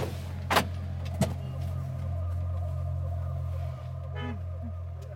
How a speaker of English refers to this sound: We're 2 hours from Baghouz and stopping at Omar oil field. It's another military base. The car barely pulls up